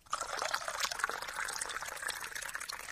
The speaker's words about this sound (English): I can see that glass. I can see the condensation on the outside of the glass as you pour it in. We can hear that plink, plink, fizz.